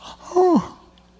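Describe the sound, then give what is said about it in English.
A single sharp, voiced gasp of shock, performed by a voice, loud, with a quick pitch drop, standing alone with no talking around it. “Or would they gasp once they heard his name?”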